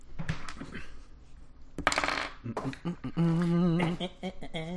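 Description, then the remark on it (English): Dice clatter and rattle across a hard tabletop in quick bursts, with a louder scattered tumble midway, followed by a brief voiced sound near the end, as players roll for initiative. “Let's roll for initiative.”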